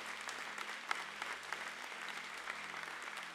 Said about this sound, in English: Amen, everybody? Amen. Come on, let's clap our hands and say good amen.